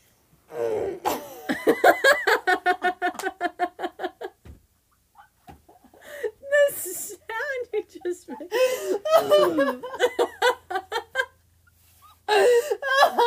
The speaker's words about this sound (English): No, when I laugh, I get, like, I have to cough. I think that happens to everybody.